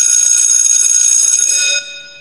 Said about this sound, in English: But if all else is, you know, ready to go at this point, I guess the last thing to do is go ahead and ring this school bell to officially get started.